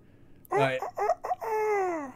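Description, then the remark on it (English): A person loudly imitates with their voice the crow call that Rufio does in the film Hook: a few quick, strained syllables followed by one long, drawn-out note that slides downward. “Crow. What is that? Yeah. Caw-caw?”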